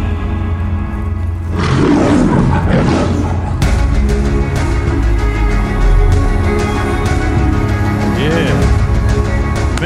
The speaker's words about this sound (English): I don't know about you, but every time that lion roars, I kind of get these chills all over, right?